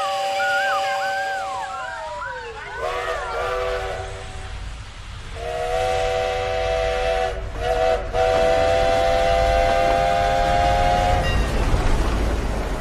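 A train rumbles past with loud horn blasts whose pitch bends downward as it goes by, a steady low roar of wheels underneath and the tones returning in sustained bursts.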